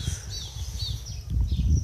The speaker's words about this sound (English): It is sunny day, 22 degrees. This is city sound and all around recording from my garden. I do used to record all the sounds. What do I hear from my garden? From the nature sounds and the tweets of the bird and all around.